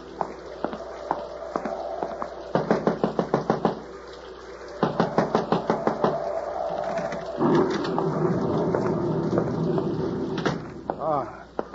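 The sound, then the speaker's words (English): Several quick bursts of firm knocking on a door, each a rapid run of raps, heard over a steady rushing background of a storm's wind and rain. “You knocking.”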